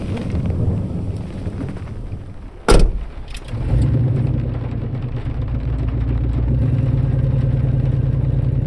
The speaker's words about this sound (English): Mrs. Tomlinson pulled the truck out of the Embry's driveway and drove down the road.